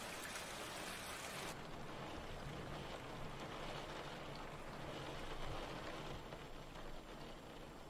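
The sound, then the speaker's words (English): Steady rain pours down outside in a dense, continuous hiss, with scattered drops pattering on surfaces. The downpour stays fairly loud and even throughout, with no voices. “It's raining outside.”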